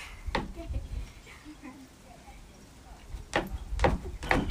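Sharp knocks on a hard surface: a single rap near the start, a quiet pause, then a quick rhythmic run of four or five knocks at the end, with faint murmuring in the background.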